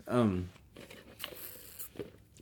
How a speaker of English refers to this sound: Takes a sip from straw.